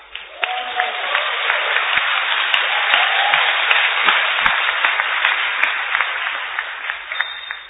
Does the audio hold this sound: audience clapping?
yes